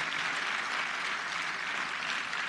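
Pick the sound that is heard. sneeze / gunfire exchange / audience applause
audience applause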